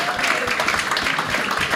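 A short burst of steady applause, many hands clapping at once in a dense, even patter that holds at a consistent level for under two seconds.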